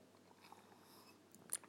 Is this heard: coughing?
no